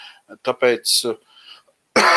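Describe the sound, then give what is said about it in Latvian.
A single harsh cough bursts out near the end, preceded by a few short throaty vocal sounds like clearing the throat. “Tas, ka es klepoju, nenozīmē, ka man ir gripa vai Covid, vismaz sakarā ar vadlīnijām, kas ir šeit Īrijas, no Īrijas veselības ministrijas, ja.”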